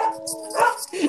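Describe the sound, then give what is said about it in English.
A dog barks and yips in a quick run of short, sharp bursts, fairly loud, over about a second. “Yo, who's got the dog?”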